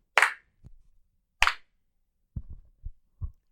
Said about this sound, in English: I'm sorry, I just needed to do an acoustics check. That was what that clapping was.